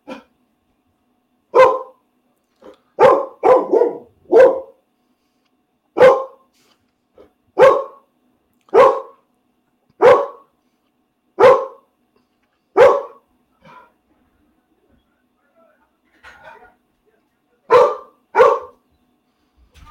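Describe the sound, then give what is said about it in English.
A dog kept indoors barks repeatedly and loudly, in sharp single barks and quick clusters of two or three, with short pauses between. No one speaks. “So my dog gets to stay in.”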